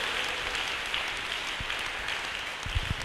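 An audience claps for Jesus in a dense, steady wash of applause that holds an even loudness throughout, with a few low thumps near the end and no voices.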